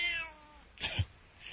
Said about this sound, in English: Kitty. Meow. Here, kitty, kitty, kitty, kitty.